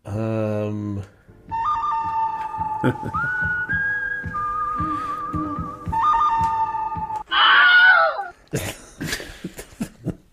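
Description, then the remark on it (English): A short, piercing scream, the Wilhelm scream stock movie sound effect, cuts in near the end, loud and wavering, after several seconds of steady whistled tones and a few vocal bursts, followed by sharp clattering knocks. “Wilhelm scream.”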